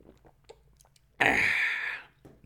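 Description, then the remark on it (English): A single loud, hissing slurp lasts just under a second as someone takes a quick sip of hot coffee, framed by soft lip and mouth sounds in otherwise quiet surroundings. “Quick sip of coffee.”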